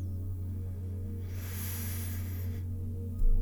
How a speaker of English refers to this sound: So, now that you're comfortable, I'd like you to become aware of your breathing. Breathing in through your nose.